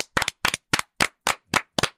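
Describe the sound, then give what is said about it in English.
Hands clap for Jason Garrett in a steady rhythm, about eight sharp, loud claps roughly a quarter second apart, each with a quick double-edged snap, with silence between and no talking. “Can we just clap for him?”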